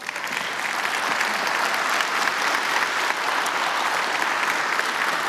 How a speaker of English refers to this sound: How about if we give them a round of applause?